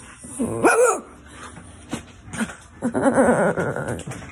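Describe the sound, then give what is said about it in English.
A dog barking at a man gives a short, sharp bark, then after a quiet pause lets out a longer, rougher string of barking sounds. “Barking at Dad and doing chores.”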